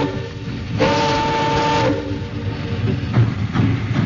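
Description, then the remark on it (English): A freight train, a celery train, rumbles steadily through mist-wet rail yards in Los Angeles at night, low heavy rolling noise throughout, with a long tonal horn or whistle blast early on and clanks of cars passing by. “Lonesome there on her caboose steps, I waved into the black Los Angeles night that devoured him in one last dark bite as the celery train slid down the mist-wet yards.”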